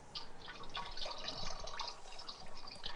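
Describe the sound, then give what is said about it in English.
Broth pours steadily from a carton into a 10-quart sauce pot, a continuous splashing gurgle with scattered bright drips, moderately loud for a few seconds with no talking. “So the first thing we're going to do is pour one of these right into our pot.”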